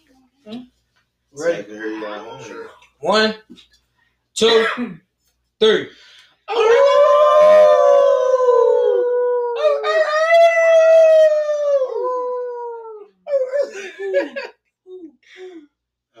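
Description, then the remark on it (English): A man howls like a dog, imitating it with long, loud, wavering howls that rise and fall for several seconds, preceded by short bursts of voice and followed by brief talk. “If I may, if you're going to howl at the moon this morning, please be careful.”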